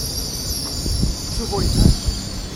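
A train in a livery with a gold stripe down one side rolls slowly in to stop at a platform on a fine day, its low rumble punctuated by brief squealing brakes and wheel screeches, with a steady high hiss in the background.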